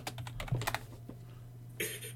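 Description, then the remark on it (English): Quick bursts of typing on a computer keyboard as someone looks up what Square Enix's Avengers game is based on, a rapid cluster of clicky keystrokes at first, then a pause before a short final flurry, with a steady low hum underneath. “This is gonna be in the podcast, just you typing.”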